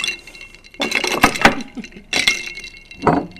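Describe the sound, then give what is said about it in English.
A spoon stirs a cocktail of elderflower liqueur topped with club soda in a glass, making bright, ringing clinks in three uneven bursts with short pauses between, some sharp taps standing out. No one speaks. “Stir it up a bit.”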